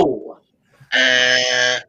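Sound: game show buzzer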